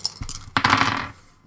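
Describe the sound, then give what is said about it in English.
Five small dice are rolled in a tabletop role-playing game, clattering and rattling, a few light clicks first, then a louder burst of tumbling impacts that settles quickly; fairly clear, with no one talking. “So it's Gnosis plus space plus 1. So that's my Gnosis is 2, my space is 2, plus 1 is 5 dice.”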